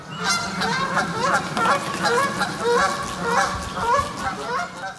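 A flock of geese honking repeatedly and loudly, with overlapping calls in a steady, rhythmic chorus over a low background hum, continuing throughout.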